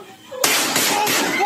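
Gunshots in phone footage of a Valentine's Day school shooting: after a brief quiet moment, a sudden, very loud crack bursts in, followed by harsh, distorted noise with a couple more sharp cracks running through it.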